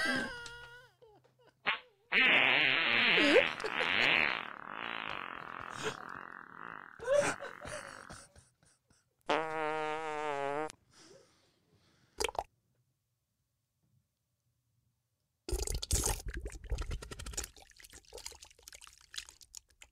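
A string of loud fart sounds: a long sputtering wet one, a brief pop, then a rippling buzzy blast, with short silences between and a messy spluttering burst at the end.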